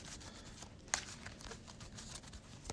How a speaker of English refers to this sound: And I'm going to take a mulligan and draw the next 6. Give our deck a quick shuffle.